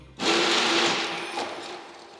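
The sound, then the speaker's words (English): A paper machine suddenly starts at the press of a button with a loud, harsh whirring roar that holds steady with a low hum underneath, surging again briefly before easing slightly. No voices are heard. “Nearby stood a paper machine, shining and bright. Santa grinned mischievously, his eyes alight. But as he pressed the button, it roared to life.”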